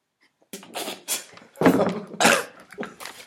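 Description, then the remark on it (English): A run of harsh coughs from someone eating yogurt, several raspy bursts in quick succession with the loudest two near the end, then a softer hack trailing off. “don't cough up your yogurt now, will you?”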